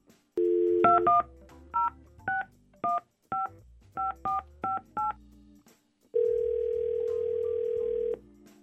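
A brief dial tone, then a quick series of about ten touch-tone keypresses beeping in an uneven rhythm as Y100 radio hosts place a call, followed by a long, steady ringing tone. Clear, with no talking.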